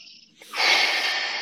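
A loud breath drawn sharply in through the nose, an airy rushing sound that starts abruptly and holds steady for about a second, with no talking.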